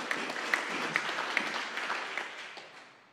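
A crowd applauds in a dense, steady wash of clapping, with a few sharper individual claps standing out, gradually fading over about three seconds.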